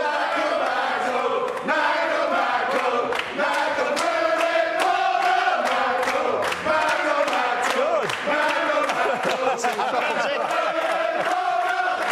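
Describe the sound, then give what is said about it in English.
A choir chants a player's song in loud unison, rhythmic and sustained throughout, with rough shouted tones and repeated sharp accents, like a crowd singing a football-style chant. “Do you know he has his own song? Please, choir, can you hit it there, please?”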